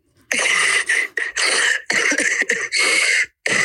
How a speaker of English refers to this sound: You can't just cough.